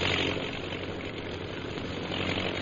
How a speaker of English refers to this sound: Look out, Kolu! That plane's flying pretty low.